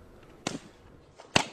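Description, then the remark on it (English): Two sharp, hard slaps, a woman slapping a man's face, land about a second apart, each a loud, crisp smack with a brief ringing tail; the second is louder. No one speaks. “Dude, she slapped his face hella fucking hard.”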